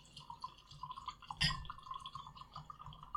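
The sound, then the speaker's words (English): Liquid pours steadily into a glass, a bright trickle with small splashing drips and a sharper clink or splash partway through, no voices. “I think that's probably enough. Yeah, a little bit more. Oh, it kept pouring.”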